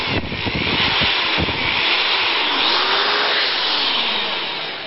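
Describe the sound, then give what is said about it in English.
A Black & Decker half-inch drive hammer drill runs with a loud, steady whirring roar, with rattling hammering bursts in the first second or so and a motor pitch that wavers as it keeps going. “This is a Black & Decker half-inch drive hammer drill.”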